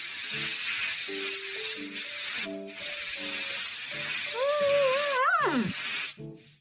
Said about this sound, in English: I can't believe you power sprayed her mouth with spray gum.